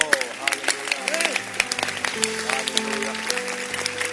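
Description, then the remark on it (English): Sharp hand claps ring out repeatedly and somewhat irregularly, over a murmur of voices and steady humming tones underneath. “But today he can clap.”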